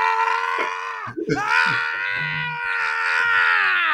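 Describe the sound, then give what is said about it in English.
A person loudly imitates a high, sustained scream, a strained wailing cry that dips briefly for a breath midway, then carries on continuously for a few seconds. “just fucking screaming.”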